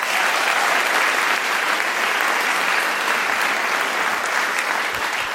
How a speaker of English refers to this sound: Please give the Hammer Theater a hand.